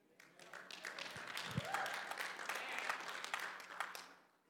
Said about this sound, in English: Nice golf clap.